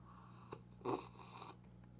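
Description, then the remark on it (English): A short slurping sip from a 'No Drama Allowed' mug: a quick airy intake, then a louder breathy slurp lasting a fraction of a second, followed by a soft swallow over faint background hum. “By the way, in honor of Scott Adams, how about a simultaneous sip?”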